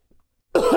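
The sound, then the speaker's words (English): After a brief stretch of near silence, a person turns their head away and gives a single sharp, loud cough that carries through to the end, with no talking around it. “Turning your head and coughing is what …'s talking himself into this week.”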